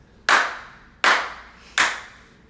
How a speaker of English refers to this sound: Let's get them claps.